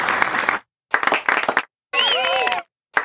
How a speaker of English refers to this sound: Which one's the best short clap? That one? That one? I like that one.